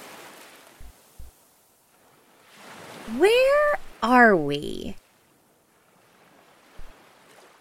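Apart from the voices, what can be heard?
ocean waves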